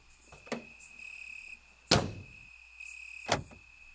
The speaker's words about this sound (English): Why did you unlock all the doors after I got out?